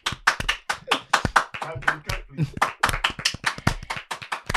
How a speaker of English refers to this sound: This guy's clapping.